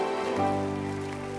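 A crowd applauds in a steady, dense patter of many hands clapping, with sustained held musical tones ringing underneath throughout.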